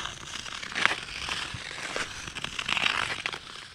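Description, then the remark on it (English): Ice skates scrape and rasp across a frozen canal in a steady, crunchy hiss, with a couple of brighter grinding bursts standing out. No voices, just the continuous skating noise. “Early in the morning when the sun comes up and there's hardly anybody on the canal and you can just hear your skates, it's about the only thing you can hear.”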